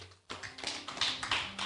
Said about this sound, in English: Are you blessed, friends? Clap your hands, church.